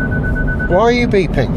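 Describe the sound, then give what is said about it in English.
A car's proximity warning sounds as a steady, fairly loud electronic tone for about half a second, then a brief voice-like sound follows over low road rumble. “Why are you beeping?”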